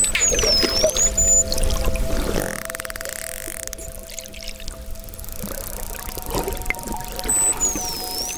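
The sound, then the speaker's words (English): Muffled underwater recording of a swimmer among dolphins: low churning and bubbling, gurgles and thumps of movement, with steady tonal hums and faint high whistling sweeps running throughout. No talking. “This is what it sounds like underwater.”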